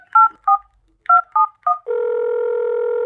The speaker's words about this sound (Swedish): Nu ringer jag till bara ICA då.